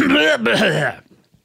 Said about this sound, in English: I should clear my throat during the break, shouldn't I?